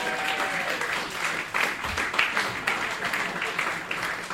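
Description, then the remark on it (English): A crowd applauds steadily for several seconds, a dense, even wash of many hands clapping at once with no single claps standing out, and a few voices faintly mixed in. “Okay, let's hear it for our Nazi friend.”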